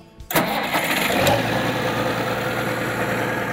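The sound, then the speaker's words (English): After a brief near-silence, the engine of a 1964 Allis-Chalmers D19 turbo diesel tractor, built in West Allis, Wisconsin, and seen in the Pacific Northwest, fires up with a sudden loud burst, then settles into a steady rumbling idle with a coarse mechanical clatter. “Oh, I got a 1964 Alice Chalmers D19 turbo diesel.”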